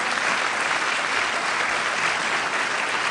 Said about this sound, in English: You know, I am, I'm not sure if you're clapping because I caught up here or because Eric left. I'm not sure which one.